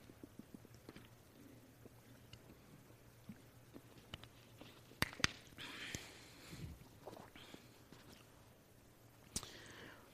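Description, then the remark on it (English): Someone takes a swig of water, with quiet clicks and handling noises, a few wet gulping and swallowing sounds, then a bottle being set down, with no talking. “Let me take a swig of water.”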